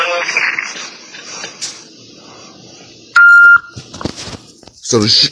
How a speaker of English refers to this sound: So you'll hear a beep when you're on hold.